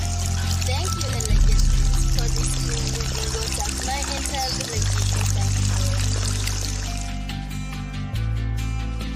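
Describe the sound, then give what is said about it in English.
Clean water pours steadily, a continuous splashing rush lasting several seconds, with a soft musical background underneath and a brief change in flow near the end. “This is the water you have given me.”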